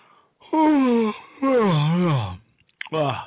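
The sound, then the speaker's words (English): A radio host's drawn-out, voiced yawn in several loud stretches, the middle one longest, its pitch sliding down and back up in a groaning, moan-like way, ending in a short final burst. “Oh, sorry, I had to yawn at the fact that Southern Sense show is being featured because, quite frankly, it's featured almost every other week.”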